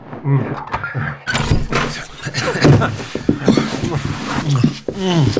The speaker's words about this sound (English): Hold on. This is the room. Let me open the door.